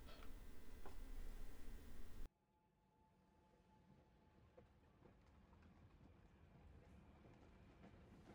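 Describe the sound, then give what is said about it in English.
A train pulls away from München Hauptbahnhof, its low rumble and faint motor whine slowly building after a loud burst of noise cuts off abruptly. No voices are heard. “The train took off from München Hauptbahnhof the next day.”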